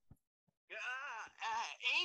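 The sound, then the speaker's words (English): A "Sonic orgasm noise" buzzer sound effect: after two faint clicks, a voice lets out three loud, drawn-out moans, the first longest, each wavering in pitch and separated by brief breaths. “Sonic orgasm noise.”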